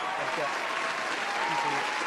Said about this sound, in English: I've got a clapping sound, so I'm just going to turn it off. You can't hear it, but everyone else can hear it. And they're definitely getting annoyed with it.